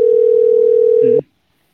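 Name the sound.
phone call ringing tone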